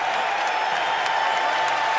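A large arena crowd comes to its feet and cheers and applauds for Derek Rose in a steady, dense roar of clapping and voices, loud and sustained without pause for the full two seconds.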